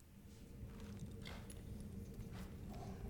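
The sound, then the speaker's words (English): Horse hooves clip-clop at a steady walking pace over a low rumbling background, fairly quiet, ending with a sudden loud thump. “You got your little horse.”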